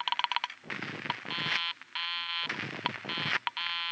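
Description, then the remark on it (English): A quick run of short beeps gives way to a harsh, buzzy telephone busy signal, heard because the dialed number is busy, pulsing on and off in even bursts over a rough static hiss. No one speaks. “The number she was calling was busy.”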